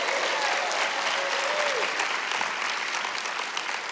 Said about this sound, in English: give her a hand clap.